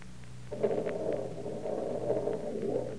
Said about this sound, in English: I think it's gone dead. Oh, fine. 1 o'clock in the morning and the car won't start.